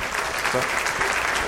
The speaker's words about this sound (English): Oh, wait, we'll give him an applause.